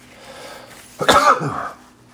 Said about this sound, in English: Pardon me, I have a sneeze coming, brothers and sisters. I apologize.